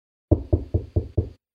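Five firm, evenly spaced knocks on a wooden bedroom door, fairly loud, each thud decaying quickly before the next in a steady rhythm.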